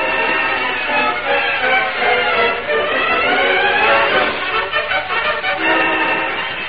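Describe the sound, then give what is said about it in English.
A train grinds to a halt at Red Rock: a loud, steady rumble of wheels and machinery with squealing brake tones sliding across it, easing off toward the end. No voices. “The train stopped at Red Rock.”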